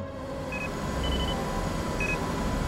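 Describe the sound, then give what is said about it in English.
Three short, high-pitched electronic beeps sound at uneven intervals in a hospital room, fairly faint against a steady low rumbling background, with no voices present. “Beeping. Again with the beeping.”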